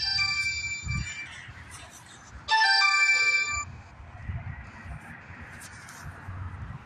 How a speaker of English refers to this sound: That phone